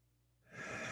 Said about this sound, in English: Let's get bring our breathing into let's control some deep breathing. Ready? Okay. I'm ready. Breathe in.